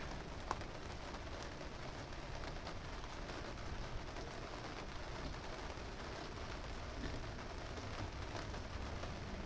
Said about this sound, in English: Can you hear the rain?